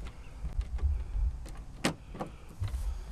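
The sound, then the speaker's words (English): Quarter-turn fasteners being unscrewed from an aircraft engine cowl to take the cover off, 15 screws with seven on each side: a series of sharp clicks and brief metallic scrapes at irregular intervals over a low background rumble, with no talking. “So to get the engine cover off, you've got to unscrew, 15 screws?”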